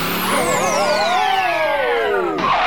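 A loud Studebaker car engine revs with a wavering, whining pitch that climbs slightly and then sinks away as the car pulls off, no talking, just the engine droning.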